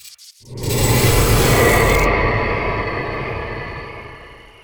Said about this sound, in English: I'm going to put it at night. We're bedding down for the evening and we have a campfire and we got some crickets and a nice outdoorsy sound.